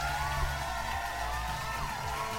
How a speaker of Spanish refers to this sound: Un pinche aplauso a estas dos.